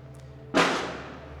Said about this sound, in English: Oh, that's a firework. I hope it is, because if it isn't, it's a gunshot.